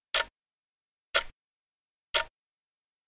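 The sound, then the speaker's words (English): A clock ticks steadily, three crisp ticks spaced about a second apart, each sharp and brief, with silence in between and no voices. “As they wrapped up the call, the clock started ticking.”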